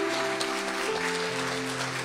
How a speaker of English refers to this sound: If you can believe that today, I want you to give God a hand clap of praise in this house.